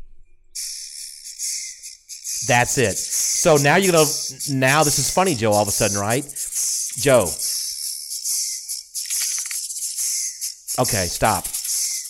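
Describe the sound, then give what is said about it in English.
A steady, hissing rattle like a snake's shaker, the 'snake jazz' from Rick and Morty, selectable as a Tesla's pedestrian-warning sound when driving slowly, runs for about eleven seconds, fairly loud, while people talk intermittently over it. “Snake jazz. Pretty sure that's what it is.”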